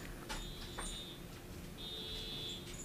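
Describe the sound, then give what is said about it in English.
A car alarm sounds faintly over steady background noise, a high, thin electronic tone that holds for about a second, breaks off, then returns and keeps going. No one speaks. “I'm actually going to check now to see if that is my car that's going off.”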